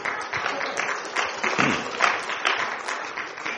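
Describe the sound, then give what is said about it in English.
An audience applauds the church worship team steadily for a few seconds, a dense crowd of overlapping claps with sharp individual hits standing out, sustained at a moderate level without voices. “We can clap for them, actually.”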